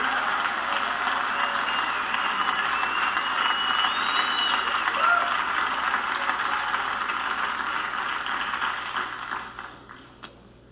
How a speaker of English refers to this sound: Can we give them a round of applause, too?